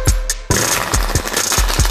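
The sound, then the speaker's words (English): A deck of cards being shuffled for a card reading: a dense, crackling flutter of cards with repeated soft thumps as the deck is bridged and tapped, steady and fairly loud, with no voices. “Give us one more good shuffle on these right here.”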